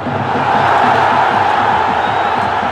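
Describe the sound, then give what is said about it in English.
A huge football stadium crowd of just under 91,000 roars and screams at full volume during a match involving Barcelona, a dense, sustained wall of voices that stays loud and unbroken throughout. “The crowd, listen to how loud them screams are.”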